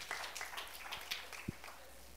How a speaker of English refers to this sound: That ends today in the name of Jesus. Yes, you can clap for that. It ends today for you.